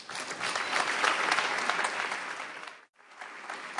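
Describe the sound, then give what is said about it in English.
An audience claps steadily in a dense, sustained burst of fairly loud applause, dipping briefly to near silence before picking up again at the end, welcoming Baroness Caroline Cox at a Socrates in the City event. “I only hope there may be some similar applause after I've finished.”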